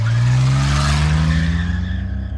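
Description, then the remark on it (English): A car engine roars as a man gets into his car outside his home and drives off with tires squealing, the loud revving pitch climbing steadily before easing slightly at the end. No voices. “And in what I'm sure was like a really awkward moment in their kitchen, you know, staring at his wife, holding his phone, he just gets up, walks out of the room, walks outside, gets into his car, and drives off.”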